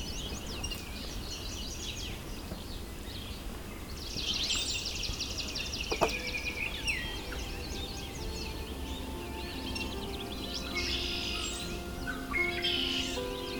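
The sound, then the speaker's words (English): A red-winged blackbird sings among a busy outdoor bird chorus, bright trilling and chirping calls repeating over steady background hum, with no voices. “Red-winged blackbird.”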